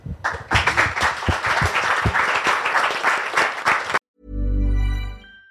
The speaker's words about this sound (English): But thank you all for listening, and let's give these guys a round of applause.